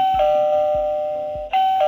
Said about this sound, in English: Who's that ringing the bell at Radio Owl's Nest today?